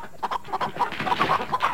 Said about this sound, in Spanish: ¿Empezaron a entrar gallinas ahora por acá? No entiendo nada.